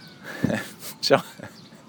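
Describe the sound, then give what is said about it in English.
Laughing gulls call twice in quick succession, short squeaky, nasal cries rising over a steady outdoor background hiss, sounding a bit like a squeezed toy. “Y'all hear these laughing goals. They sound like dog squeeze toys.”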